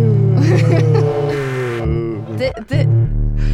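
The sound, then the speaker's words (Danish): A loud, buzzy synthesizer square-wave tone holds a low pitch with bright, hollow overtones, wavering and sliding slightly before briefly cutting out and returning as a deeper sustained drone. “Softtooth? Bæv? Beaver? Bævertænder? Nej! Square wave? Ja!”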